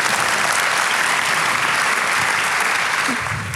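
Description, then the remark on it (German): An audience claps steadily, a dense wash of many hands at a constant loud level, beginning to taper off slightly near the end. No one speaks over it. “Ein grosser Respekt, Applaus für euch beide.”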